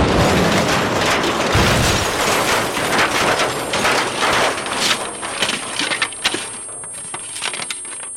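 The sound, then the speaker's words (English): A loud car crash as a car is struck from out of nowhere and its side crumples: a heavy low boom early on amid a dense roar of grinding metal, then scattered crunches and rattling debris that gradually thin out and fade. “The side of the car crumpled around him like an industrial cocoon.”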